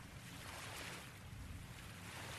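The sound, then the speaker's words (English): Ocean waves wash ashore in a steady, continuous roar of surf, a broad hissing rush that stays at an even level throughout, with no voices. “Let the waves help you.”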